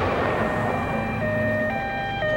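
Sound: sirens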